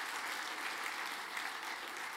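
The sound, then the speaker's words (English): Steady audience applause for the AV team at a church, a dense wash of many hands clapping at an even loudness throughout, with no voices rising above it. “Can we just give a round of applause for our AV guys back there,”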